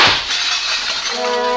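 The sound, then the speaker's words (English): Glass shatters with a sharp crash, followed by a bright, scattered tinkling of shards that rings on briefly, loud and with no voices. “Frassino pitched forward, bounced against his desk, fell into the broken glass on the floor.”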